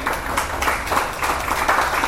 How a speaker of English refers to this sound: Give him a little hand clap, amen?